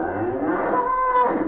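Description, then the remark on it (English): A cow lets out a single long, loud moo that carries steadily for over a second, with no talking over it. “Oh, look, there's a cow.”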